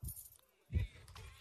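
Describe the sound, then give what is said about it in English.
Keys jingle in two short metallic bursts, a quick shake at the start and a louder rattle just before the middle, with a softer jangle trailing off after. “She said, I got keys.”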